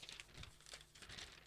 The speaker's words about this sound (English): as you hear me live now, I'm checking the other pages of this thing, you know, just in case there's something, you know, like another note in here.